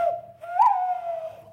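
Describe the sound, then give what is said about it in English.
A person mimics an owl hoot: one long, breathy, whistle-like tone that swells partway through and then holds steady. It is clear, with no talking. “That was an owl. That's pretty good.”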